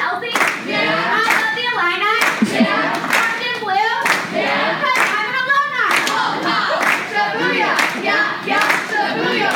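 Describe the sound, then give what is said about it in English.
Scattered, half-hearted hand claps, a dozen or so sharp irregular smacks with no steady rhythm, mixed with voices singing or speaking throughout. “Look at the people barely clapping.”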